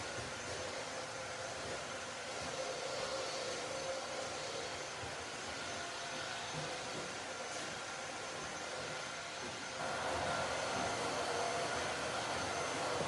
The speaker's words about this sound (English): I'm going to appreciate that someone is running a vacuum. And forget the fact that she's decided to run it right now.